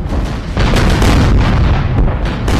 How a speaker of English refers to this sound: This quickly turned into a good old, honest-to-God, pitched naval battle. Steam-fired engines belch smoke as the fleets blast volley after volley of cannonade.